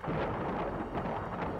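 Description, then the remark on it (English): A thunderstorm roars steadily, with low rumbling thunder blended into dense wind and rain noise that stays loud and unbroken throughout the short stretch. “The storm only made it worse.”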